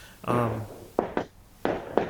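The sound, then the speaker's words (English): Fireworks pop outside in two quick pairs of sharp cracks, moderately loud, following a brief moment of someone talking. “What the fuck's that sound? It's fireworks.”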